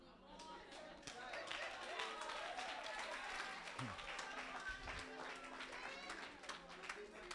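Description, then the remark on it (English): A church audience claps steadily for the preacher for several seconds, a dense, sustained patter of many hands, with crowd voices mixed in underneath. “Be clap for me.”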